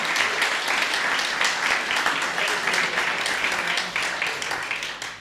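A crowd applauds a speaker who has just finished, steadily for about five seconds, a dense wash of many hands clapping at once, full and sustained before easing off slightly at the end.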